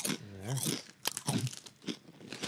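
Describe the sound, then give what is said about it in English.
Loud, crisp crunching of kettle chips: sharp irregular bursts of chewing, with a few low hummed murmurs from the person eating in between bites. “Oh, they are kettle chips.”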